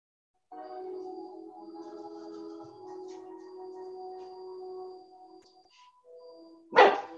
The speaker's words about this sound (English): do not bark at him. Come here.